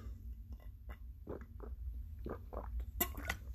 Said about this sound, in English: Sorry, just had to take a sip.